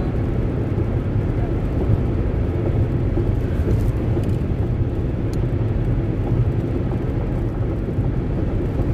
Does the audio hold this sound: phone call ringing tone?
no